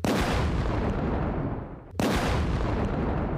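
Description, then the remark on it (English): A loud gunshot salute sound effect: a booming blast that rumbles and fades, then a second sharp blast bursts in and roars on. Dense and forceful, with no voices. “Matter of fact, gunshot salute.”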